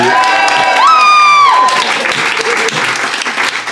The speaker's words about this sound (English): Anyway, so if you think Ben and Milton made the best case, applaud now.